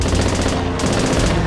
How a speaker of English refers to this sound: The first Japanese bombers lined up their attack runs over Battleship Row. Meanwhile, their fighter escorts raked the decks of the ships with machine gun fire.